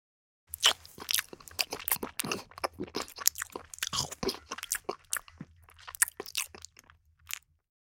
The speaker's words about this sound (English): Man eating scrambled egg.